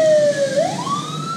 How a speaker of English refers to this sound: There's literally a fire truck going by the house right now.